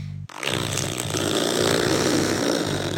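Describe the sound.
A listener-submitted vocal imitation of a red fox fart, not a real animal: after a brief quiet start, a loud, steady, low buzzing rasp kicks in and holds for almost three seconds, rough and motor-like, with no talking.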